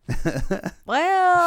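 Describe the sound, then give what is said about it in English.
A voice imitates a cat licking itself: four quick, wet mouth-noise bursts in a row, then a drawn-out hummed, vocal tone. Fairly loud, with no speech. “Me just sitting here naked licking myself, just like...”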